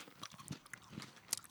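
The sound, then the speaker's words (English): Crunching on a Choco Boy chocolate mushroom biscuit cookie, a buttery biscotti-like cookie with a chocolate cap: a few crisp, crackly bites and chews come at an uneven rhythm, fairly quiet, with no talking. “Hang on, I'm still eating Choco Boy.”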